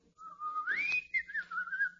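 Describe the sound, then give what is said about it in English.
A person whistles a short melodic tune, a single clear tone gliding upward then wavering and settling, fairly loud with no talking. “…. I can whistle it for you.”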